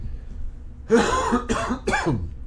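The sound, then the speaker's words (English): Three harsh, closely spaced coughs with a rough throat-clearing quality, fairly loud, with no speech around them. “I apologize for all the coughing.”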